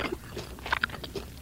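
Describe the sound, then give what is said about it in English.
Someone bites into crispy Yangnyeom fried chicken, giving a few short crackly crunches with sharp bright snaps, followed by softer chewing, all fairly quiet with no talking. “So crispy. I hear it.”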